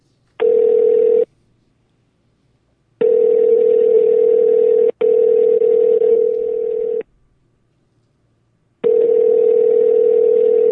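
Telephone line tones sound alone: a steady, loud buzzing tone comes in repeated bursts of a second or two, separated by silent gaps, as the hosts of Blind Living Radio place a call to a guest.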